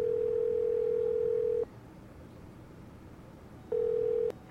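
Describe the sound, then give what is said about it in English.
A telephone dial tone, heard while placing a call to a sister, hums steadily for over a second, falls silent for about two seconds, then sounds again briefly; a clear, mid-pitched tone over faint line hiss, with no voices. “Well, maybe we ought to call my sister and see if she learned anything from this last phone call. Doing that right now.”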